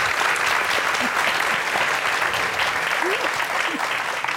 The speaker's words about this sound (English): So please, a round of applause for UCLA.